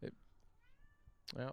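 A male cat meows loudly, with a thin, drawn-out cry in between and a final strong, harmonic meow at the end, three calls in a short burst.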